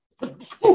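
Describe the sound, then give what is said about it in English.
A single sneeze, fairly loud: a short breathy intake building into a sharp, voiced burst that ends abruptly. No one talks. “Gesundheit.”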